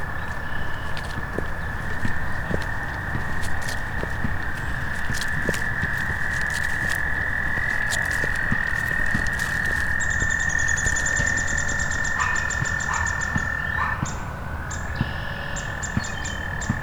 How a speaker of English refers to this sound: A lot of frogs too. Those are frogs.